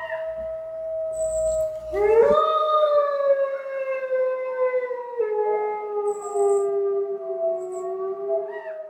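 Wolves howl in long, drawn-out, rising and falling tones, several voices overlapping in a sustained chorus that fills the whole stretch without any talking.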